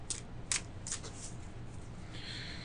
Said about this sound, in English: I've taken out my cards and I'm shuffling them.